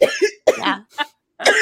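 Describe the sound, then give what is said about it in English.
A loud run of harsh, breathy coughs from a person coughing while laughing, four or five bursts in quick uneven succession with short gaps, mixed with laughter-like sputters and no speech. “I just cough when I laugh.”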